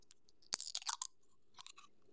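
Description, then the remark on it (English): A Red Bull energy drink can cracks open: a sharp click followed by a brief crackling fizz, then a second, softer burst of crackle shortly after. No one speaks. “Now, for SMR sakes, let's crack open the Red Bull.”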